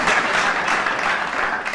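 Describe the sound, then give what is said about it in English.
A steady burst of clapping, many hands at once, forming a dense, even wash of claps that holds at a fairly loud level for under two seconds with no voices. “Give me a little bit of clap back”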